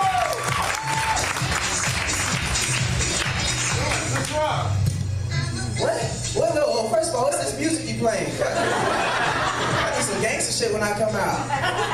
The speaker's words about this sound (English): His favorite planeteer was a Chinese dude. That's why I'm clapping right now. It's my man, Mr. King, Andrew Bachelor.